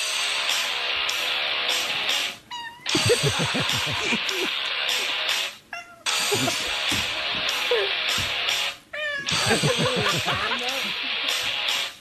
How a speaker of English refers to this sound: There was a video on YouTube recently of a cat singing along to one of your songs.